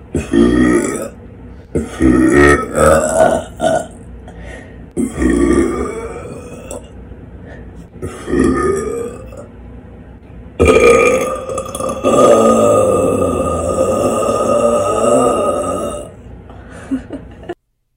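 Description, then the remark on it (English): A series of loud burps, each a throaty, rumbling belch, building to a final long, drawn-out deep burp that lasts several seconds. No talking. “That was a burp, that last one.”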